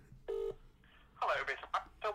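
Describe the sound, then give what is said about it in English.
A single short, loud telephone keypad tone sounds briefly as a phone call is placed, followed by indistinct talking that starts up about a second later. “Phone call time is there.”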